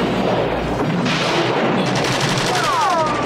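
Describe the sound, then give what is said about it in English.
Heavy gunfire rattles continuously as a group of police officers in a circle fire machine guns and shotguns at a man, dense overlapping volleys of rapid shots, loud and sustained throughout, with no voices. “Machine guns and everything. Shotguns, machine guns.”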